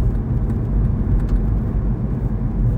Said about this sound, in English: All right. Well, I should probably focus on driving here. The roads in Washington are pretty gosh darn bad.